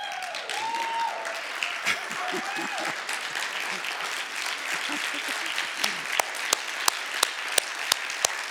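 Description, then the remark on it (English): An audience applauds God in a dense, steady patter, with voices calling out over it early on; near the end the clapping thins into a few loud, evenly spaced claps. “Wouldn't it be cool someday to be with a group of people who are so excited about some of these things that when the Bible says, on your feet, applaud God now, they actually did it.”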